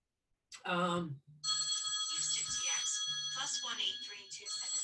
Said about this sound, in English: Sorry about that. My phone, it needs to not ring.